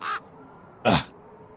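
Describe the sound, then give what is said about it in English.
A large raven sitting in a hole in a window gives two harsh, raspy squawks, a short one and then a louder, fuller one a moment later, clear against a quiet background. “Sat in the hole in the window is a large raven who appears to be just sort of watching the group with some interest, and it gives a bit of a squawk as Shirky awakens.”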